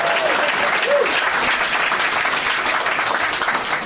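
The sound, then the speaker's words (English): A round of applause for the game Schmovie from many hands, a dense, steady clatter that holds at an even loudness for a few seconds, with a couple of brief rising whoops near the start. “And we also, I was kind of shocked that there wasn't like a round of applause for the Schmovie.”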